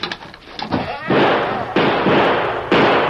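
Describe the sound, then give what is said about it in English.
Three loud gunshots ring out in a Lone Ranger radio drama, fired too high at the Lone Ranger as he comes crawling in on his hands and knees; each a sharp crack trailing into a long, harsh roar, spaced unevenly after a moment of muffled voice and scuffling. “You were trying to kill me, so you shot too high.”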